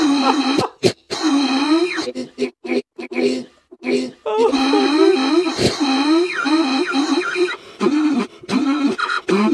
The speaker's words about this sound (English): Jesus Christ, dude. Oh, you ever cough and get lightheaded? Oh my God. I don't know what the fuck that is.